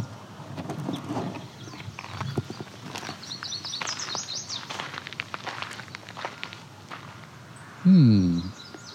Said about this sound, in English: So we either have a yellow warbler or a chestnut-sided warbler that just sang that. Did sound like it might be the pleased to meet you version though, which is chestnut-sided warbler. But nope, it was the yellow warbler version.